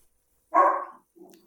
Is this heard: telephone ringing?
no